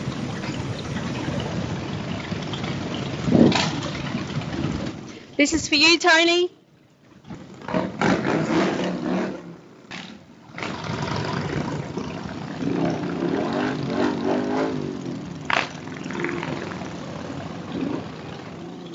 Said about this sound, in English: we might go out with the sound of Tony's mates leaving our local hotel on their Harleys. Music to Tony's ears, I'm sure, and I know that he was listening.